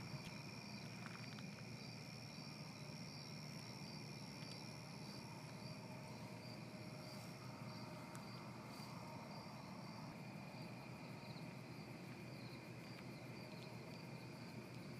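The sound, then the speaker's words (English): A steady chorus of crickets chirps in rapid, pulsing trills throughout, fairly quiet and unbroken, over a soft background hiss with no one speaking. “Eventually you recenter back on yourself, and the sound of crickets instead of violins fill your ears.”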